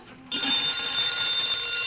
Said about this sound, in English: Answer the phone. Oh, come on, Jerry, you answer it. Dean Martin, I will tell you why I will not answer the phone. Indubitably, that is a call from NBC.